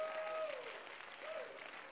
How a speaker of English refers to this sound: Hallelujah, hallelujah. Clap your hands to the Lord and give Him praise.